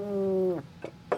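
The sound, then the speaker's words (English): A cat lets out one drawn-out, steady meow, fairly loud, followed by a couple of brief, soft rustling bursts. “That cat's a nasty son of a bitch.”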